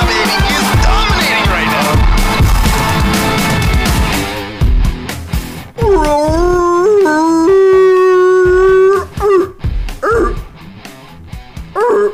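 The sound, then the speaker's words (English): A person imitates a seal with a loud, drawn-out wailing bark that wavers in pitch, after a few short barking yelps and a burst of busy noise at the start. “Was that a seal? I thought you were doing like a dog that got run over by a car.”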